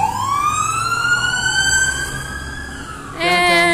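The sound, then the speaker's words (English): Police sirens from multiple cars in a high-speed police chase: one wails in a long rising sweep over low traffic rumble, and a second, harsher siren cuts in near the end, both fairly loud. “There's a high-speed police chase. Oh, my God. Multiple cars.”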